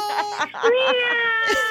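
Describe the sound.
Several people on a radio show imitate a cat's meow together on a count of three, a drawn-out, wavering, high-pitched "meow" held for over a second, slightly uneven as the voices overlap, rising at the end.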